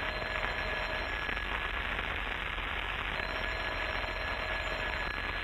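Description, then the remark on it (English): An old-style telephone bell rings in bursts over a steady hiss, fairly loud, with no one speaking. “Rochester, why don't you answer the phone?”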